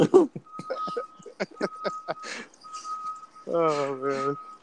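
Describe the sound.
A steady, high whistled tone mimics an 18-wheeler truck's reversing beeps in a couple of sustained stretches, over clicks and chatter, followed by a burst of voiced laughter.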